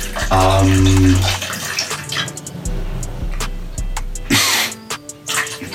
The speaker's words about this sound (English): Finish pouring.